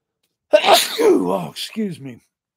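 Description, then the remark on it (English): A loud sneeze bursts out with a sharp breathy onset and a drawn-out voiced tail, followed by a brief, softer vocal sound before silence. “I'm sneezing from reading about entheogens.”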